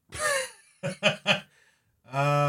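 A brief coughing fit: a strained, breathy gasp, then three quick, harsh coughs in a row, followed by a sustained voiced sound as the fit trails off.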